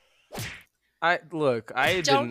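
A single sharp, whooshing slap sound effect, a downloaded effect called Slap N1 Pugin, rings out, then a loud, drawn-out voiced cry with sliding pitch follows after a brief pause.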